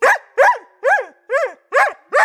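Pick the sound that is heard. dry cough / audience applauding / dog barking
dog barking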